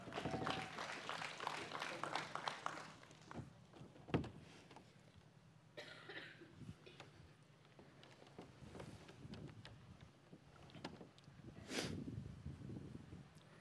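An audience claps their hands during a morning church service in a lively burst of applause that tapers off after a few seconds, followed by scattered coughs, throat clearing and quiet room noise.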